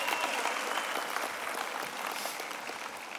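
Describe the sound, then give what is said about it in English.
A large audience applauds a worship team, a dense, continuous wash of applause at moderate volume, tapering slightly toward the end, with no speech over it. “If you're listening anywhere you are, if someone just led you in worship, wherever you are, be it Fort Worth, Houston, Cedar Rapids, wherever, can we just applaud the way that they use their talents to stir our affections for God?”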